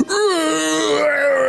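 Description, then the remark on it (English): A person voices a long, wavering howl imitating a creature's scream as acid from an orb sprays over its chest in a game, a sustained strained tone that holds steady and loud for over a second without any words. “As the acid sprays all over its chest, it lets out this horrible howling scream as it does so.”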